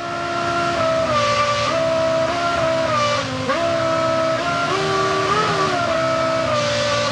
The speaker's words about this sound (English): So the engine would change RPM and hold it there just like you would do with a musical note. Oh, that's a real engine. Yeah. That's not just the computer simulating it.